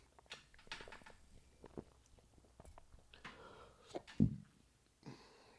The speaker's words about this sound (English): Sorry, I had to belch a little bit. Jeez. Whew. I made this delicious dinner, and it's kind of wrecking my internals right now, folks.